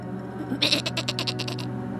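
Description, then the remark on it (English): A sheep lets out one long, quavering bleat with a fast tremolo, clear, over a steady low rumble in the background. “They begged, twisted in their throats, and became the bleating cries of sheep.”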